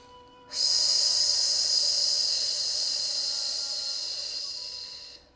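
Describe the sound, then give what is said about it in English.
A single long, hissing snake-breath exhalation through the teeth during a breathing exercise, fairly loud, held steadily for about five seconds before cutting off, with no talking around it. “Just 30 more seconds of that snake breath.”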